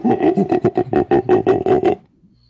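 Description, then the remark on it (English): A person's voice imitates a monkey, chanting about eleven quick, loud, rhythmic hoots in a steady burst that stops abruptly after two seconds, followed by near silence. “He didn't want to hear the monkey chant.”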